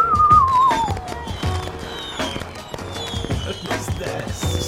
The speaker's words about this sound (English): It's landing. Boats don't whistle when they land unless there's a hole in the bottom.